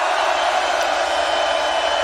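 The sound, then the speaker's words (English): A large crowd at the Ultra Europe festival screams together on a count of three for a family photo, in one sustained, loud wash of high-pitched voices that holds steady without a break for the whole two seconds. “On the count of three, I want y'all to scream.”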